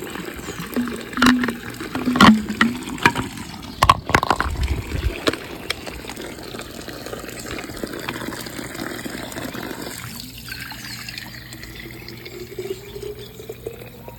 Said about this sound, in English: Good morning from Usha Village. And this is where we fill up our thermal water. This shit hotter than a volcano.